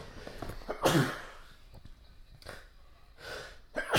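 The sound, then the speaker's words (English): A sudden sneeze from a man bursts out loudly near the start, followed by a few softer breathy puffs and sniffs spaced over the next few seconds, with no talking. “Excuse me, sorry. Bless you, sir.”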